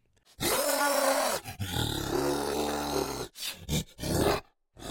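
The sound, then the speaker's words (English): A loud, drawn-out giant monster roar for a kaiju film, apparently voiced by a person, growls and groans for about three seconds, followed by a few shorter guttural bursts, forceful with no other sounds. “And what would a giant monster be without a giant roar?”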